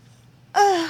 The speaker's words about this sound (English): I yawned. You're yawning. Thank you, yawning. You're welcome, yawning.